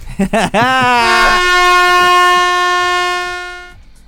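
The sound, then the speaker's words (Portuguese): A loud horn sound effect: a few short bursts, then a single blaring tone that swells up in pitch and holds steady for about three seconds before fading out. “Hoje saiu só uma, mas teve buzina.”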